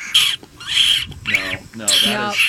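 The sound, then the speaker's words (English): A series of four shrill, high-pitched squeaks and squeals, fairly loud, like a wounded rodent or small bird, blown on a lip squeak predator call used for calling coyotes. “It's called the lip squeak of a coyote.”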